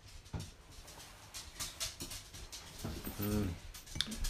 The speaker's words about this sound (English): Hello, Teasel. Hello. It's a dog's life, isn't it? There she is.